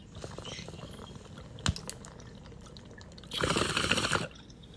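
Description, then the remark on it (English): Bong water bubbling in a steady gurgling crackle as someone takes a hit of freshly ground weed, swelling into a louder, rapid burst of bubbles near the end before easing off. No one speaks. “Okay, I'm about to take this rip.”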